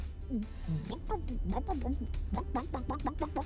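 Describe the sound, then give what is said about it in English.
A mother, asked by a child what the chicken says, imitates a chicken with a rapid string of short, clipped clucks, steady in loudness, picking up pace toward the end over a low background hum. “Mama, what does the chicken say?”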